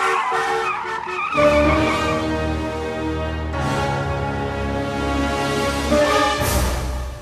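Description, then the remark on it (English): Car tires skid and squeal loudly in a sustained screech, with a strong engine rumble underneath, rising in bursts as the car brakes hard in a near collision when another car cuts out in front of it. No voices. “Now that was a close call. The other car cut right out in front of you.”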